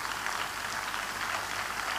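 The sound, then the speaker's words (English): An audience claps steadily and energetically as a clap offering to the Lord, a dense, sustained patter of many hands for a couple of seconds, with no voices heard. “Give the Lord a big, big clap offering.”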